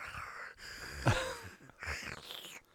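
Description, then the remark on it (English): A voice imitates the heavy, raspy breathing of a man in a maroon velour tracksuit standing behind the speaker, in a few drawn-out huffs and gasps, moderately loud, with no words spoken. “That's how he's it's breathing.”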